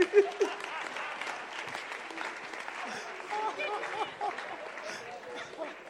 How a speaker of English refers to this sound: Hey! Clap for interpreter.